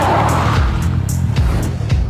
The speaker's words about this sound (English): an engine revving, and then I saw it back up and then tear out of the parking spot and make a very fast turn. It was squealing tires.